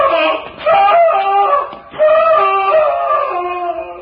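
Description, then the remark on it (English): A man screams in agony, two long, wavering, high-pitched cries separated by a brief gasp, loud and raw with no talking over them. “Sounded like a man in mortal agony.”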